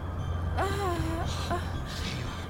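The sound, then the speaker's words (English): A woman gasps sharply with a strained, rising vocal catch as she comes back to breathing, followed by a second shorter gasp and ragged breathing, against a steady low hum. “That's it. Piss and vinegar. That's you, girl. You just keep breathing.”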